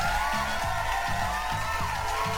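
An applause sound effect thanking the show's Patreon supporters: a steady, dense wash of clapping that stays loud and even across the whole clip, with a low rhythmic thump running underneath.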